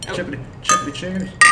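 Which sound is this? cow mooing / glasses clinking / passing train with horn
glasses clinking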